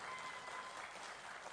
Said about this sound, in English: How good is it to be together worshiping like this? Yes, we can give a clap for that.